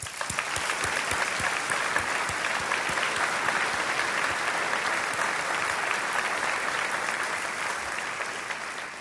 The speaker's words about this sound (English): And while they weren't able to join us this evening, let's honor the Bartek family with a round of applause.